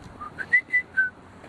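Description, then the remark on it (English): A robin sings a brief phrase of four or five clear, thin whistled notes, spaced slightly apart and rising and falling in pitch, fairly soft against a quiet outdoor background with no talking. “Oh, it's a little robin.”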